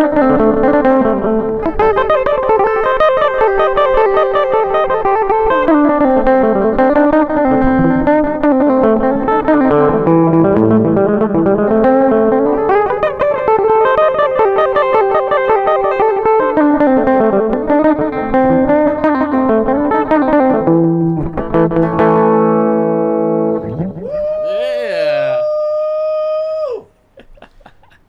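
Loud, distorted electric guitar riffs play continuously with rising and falling melodic phrases, then end on a sustained, squealing feedback-like whine before cutting off. No one speaks.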